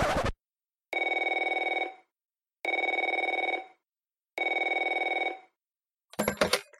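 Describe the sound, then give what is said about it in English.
A telephone rings three times in steady, evenly spaced bursts, each a bright, buzzing trill lasting about a second, framed by short clattering noises at the start and end. “You told me not to call this emergency hotline for Justice League Europe unless it was a vital emergency.”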